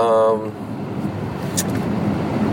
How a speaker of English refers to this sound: Wow, traffic right here at this hour. That's amazing.